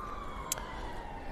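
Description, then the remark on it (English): An ambulance siren wails outside as it goes fast through an urban area, its steady tone sliding slightly lower as it passes, faint beneath a low background rumble, with one brief sharp click partway through. “It's an ambulance.”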